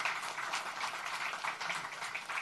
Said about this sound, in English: She deserves a round of applause.